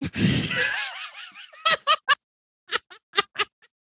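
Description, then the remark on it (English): A long, drawn-out yawn, fairly loud, starting breathy and sliding down into a groaning sigh, followed by several short, quick breathy bursts like soft chuckles. “I yawned, everybody.”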